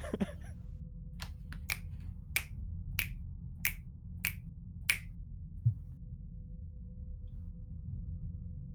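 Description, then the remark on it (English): About eight crisp finger snaps ring out over a few seconds, sharp and bright, falling into a fairly steady rhythm against a low, constant hum, with no voices. “If there's a snapping addiction, I'm there.”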